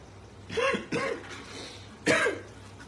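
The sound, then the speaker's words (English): Three harsh coughs, two in quick succession and a third after a short pause, from someone whose water went down the wrong pipe. No one speaks. “My water went down the wrong pipe.”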